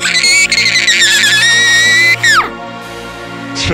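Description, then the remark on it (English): A loud, piercing scream holds a shrill, wavering pitch for about two seconds, then drops away sharply in a falling slide, leaving near-silence with faint background noise. “do it again. What? Scream!”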